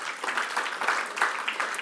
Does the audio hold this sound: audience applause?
yes